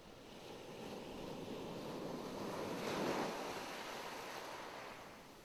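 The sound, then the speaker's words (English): Broad, rushing ocean waves on the open sea roll steadily with a swelling surge near the middle, accompanied by wind noise buffeting the microphone, with no voices present. “An open ocean. A seafaring vessel.”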